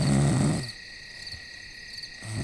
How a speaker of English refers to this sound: Night comes on fast as we prepare for bed. As the quietness settles in and the crickets begin their singing,